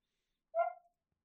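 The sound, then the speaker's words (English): A single short bark from dogs downstairs, fairly faint, rings out once in otherwise near silence, with no one talking. “The dogs downstairs are just going absolutely mental.”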